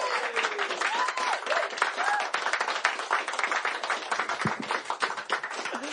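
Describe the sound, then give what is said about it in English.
A big round of applause from a crowd welcoming a performer to the stage, many hands clapping in a dense, steady wash that holds loud for several seconds, with a few faint whoops and voices rising through it. “Put your hands together. Give him a big round of applause and welcome to stage.”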